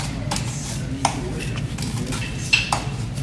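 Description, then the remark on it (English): Limes and sugar being muddled in a mixing glass to extract the oils from the lime skins and the juice and to dissolve the sugar: a few irregular sharp knocks and glassy clinks over a steady low background hum, with no talking. “And you're extracting the oils from the skins of those limes.”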